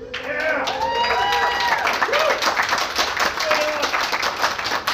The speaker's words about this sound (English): Alright guys, we have a fun show for you tonight. You guys are fun, look at you guys, holy shit. Give a round of applause for yourself, guys.